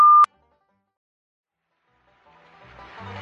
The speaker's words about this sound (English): Please leave a commercial after the beep.